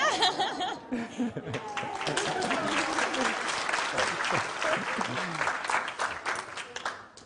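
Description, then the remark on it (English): An audience at a meeting claps steadily for several seconds as a thank-you to a person who stands up, a dense patter of hand claps with some laughter and murmuring voices mixed in, fading slightly at the end. “You might like to just stand up so that everyone knows who they're clapping.”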